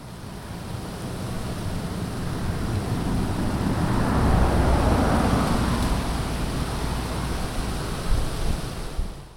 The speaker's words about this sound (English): Even in the ridiculously bucolic French countryside where I spent the month of April, I couldn't get away from the deafening sound of cars.